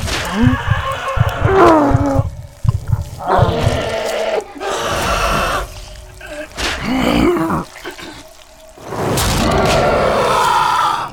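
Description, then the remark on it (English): Loud, strained cries of a person in excruciating pain from extreme muscle spasms come in a series of bursts with short gaps between them. They grow lower and rougher until they become a guttural, animal-like roar. “Last thing I remembered was hearing my own screams changing deeper and deeper until it was a roar.”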